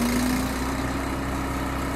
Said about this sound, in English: Then they hook up a grinder. It's mounted on a trailer, and the pods get fed into a metal cone and ground up.